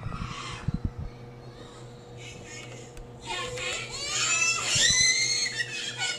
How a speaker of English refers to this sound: These are like fucking babies. They're in like daycare. So like I'm talking about like 2 and 3 year olds, and they're absolutely terrified, screaming and crying.